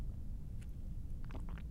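A gulp: a brief wet swallowing click, then a quick cluster of watery throat sounds, fairly quiet over a steady low rumble, with no talking.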